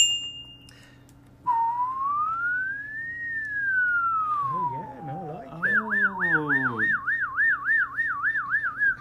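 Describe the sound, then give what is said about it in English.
A person whistles an imitation of an LAS ambulance siren, fleet number 8741, starting with a long rising and falling wail, then shifting into rapid warbling yelps, loud with faint background hum. “Was that an LAS siren? Yes, it's fleet number 8741.”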